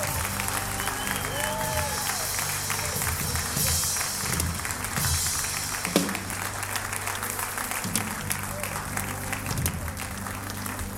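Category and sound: crowd, audience applauding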